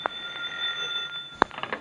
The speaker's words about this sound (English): answer the phone, someone. I'll get it.